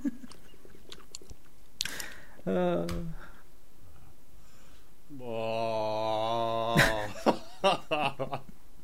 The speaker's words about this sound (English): Sorry, I had another spoonful. Vote! Why are you eating it? Because I'm hungry. You're like a feral child. I'm so sad. I've never been this sad while chewing food.